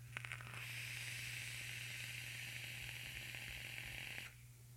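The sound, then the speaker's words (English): Steady sizzling crackle from the coil of a squonked rebuildable atomizer (RSA) firing during a draw, lasting about four seconds with scattered pops, then cutting off abruptly; a low electrical hum runs underneath throughout. “And I even get like, can you hear the crackle? I just want to make sure you can hear the crackle.”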